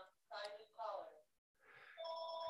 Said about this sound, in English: Waiting for the phone to stop ringing.